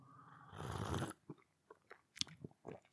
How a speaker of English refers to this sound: Ah! Going to have another quick sip of my tea because it's still really hot.